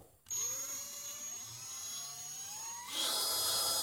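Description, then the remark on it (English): A cordless drill, fitted with a battery pack, whirs to life with a steady motor whine whose pitch creeps upward as the chuck spins, then jumps to a louder, harsher buzz near the end. No one speaks. “And you can just feel the chuck spinning.”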